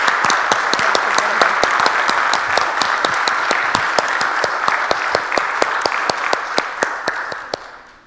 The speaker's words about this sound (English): Let's offer them a round of applause and congratulate them.